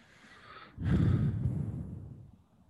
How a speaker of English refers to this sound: There's a lot of nasal breathing into the mic, which I'm happy I'm not doing for once.